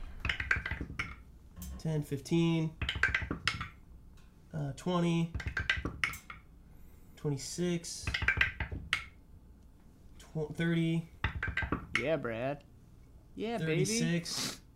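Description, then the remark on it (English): Dice clatter and tumble in quick bursts of sharp clicks, with people talking over and between the rattles. “Let's get those dice out.”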